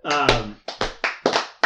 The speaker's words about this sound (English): That's enough slow clapping. That was the worst slow clap I've ever heard.